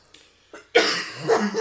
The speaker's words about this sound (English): Oh, God. Now the coughing has started.